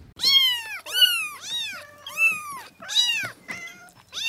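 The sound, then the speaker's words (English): Several high, thin kitten meows follow one another in quick succession, about five or six rising-and-falling cries close up and fairly loud, with no talking. “We were requested to add something to the podcast, so I'm going to add kittens.”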